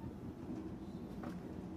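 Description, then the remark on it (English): Steady low rumble of a moving passenger train heard from inside, a continuous droning hum with faint rattling above it, fairly quiet and unbroken, with no voices. “It's so nice being on a train.”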